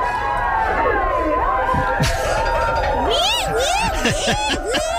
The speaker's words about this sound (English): And the crowd goes wild.